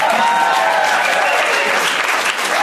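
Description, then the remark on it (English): A comedy show audience claps steadily for a few seconds to answer who chose not to see a movie, a dense, loud wash of many hands with no break in the rhythm and no voices standing out. “All right, and those of you that haven't seen it, applaud if you were like, I'm not going to go see that”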